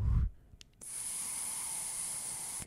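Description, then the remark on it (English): A steady, airy hiss of air being drawn through an old vape drip tip fitted in a Guar mod, lasting about two seconds at an even level with a faint high whistle on top, after a brief low thump. “You hear that airflow?”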